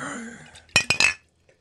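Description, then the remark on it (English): A glass bottle clinks three times in quick succession, bright ringing knocks as if fumbled and nearly dropped, after a low murmur, then silence. “You nearly smashed your bottle.”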